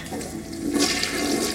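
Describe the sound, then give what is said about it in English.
A toilet flushes, a steady rushing gush of water that swells and grows brighter partway through and keeps churning to the end, with no voices over it. “Nice flush.”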